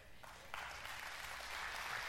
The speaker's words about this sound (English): Now, if you're not clapping right now, come on, something's wrong.